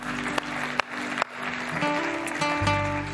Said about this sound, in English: I think that's worth clapping for. We can give all these guys a hand. That's awesome.